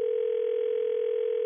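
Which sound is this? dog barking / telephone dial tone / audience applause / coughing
telephone dial tone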